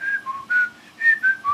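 mobile phone ringtone

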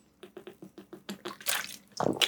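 sipping water

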